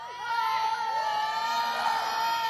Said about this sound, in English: You guys know what shouting is? Can you demonstrate? What's shouting?